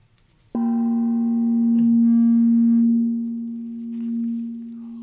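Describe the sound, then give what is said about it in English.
A single gentle gong stroke opens into a long, steady low tone that rings on with faint overtones, swelling softly and fading slightly without dying away. No one speaks over it. “And I think let's see if we can get another gentle gong sound before we go.”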